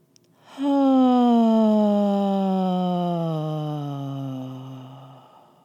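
A long, slow belly-breathing exhale out the mouth, voiced as a steady sighing "ha" tone after an inhale through the nose, drifting gradually lower in pitch for about five seconds, fairly loud, fading out at the end with no talking.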